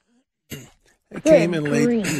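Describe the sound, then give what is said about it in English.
A short cough, then a second burst that rolls into a drawn-out, voiced throat sound, heard alone with no talk over it. “excuse me, King, God, where's the cough button?”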